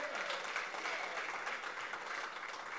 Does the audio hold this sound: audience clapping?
yes